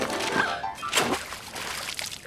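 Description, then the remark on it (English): A single sharp splash as a purse drops into the Seine river in Paris, followed by a brief trickle and slosh of moving water, moderately loud. “Oh my god, oh my god, oh my god, no, my purse, that's everything in the river.”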